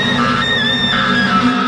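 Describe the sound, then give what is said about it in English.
A woman, Amy played by Karen Gillan in a Doctor Who clip, lets out a loud, sustained scream lasting over a second, her pitch wavering slightly, with no talking around it. “And we thought Watling screamed.”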